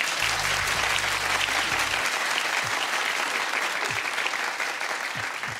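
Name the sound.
audience applause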